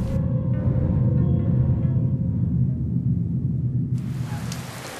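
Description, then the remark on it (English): Steady rain pours down on a crowd of people at a funeral, over a deep, continuous rumble like thunder, and the hiss of the downpour grows brighter and sharper near the end. No one speaks. “Piper and Phoebe stand amongst a crowd of people in the rain at a funeral.”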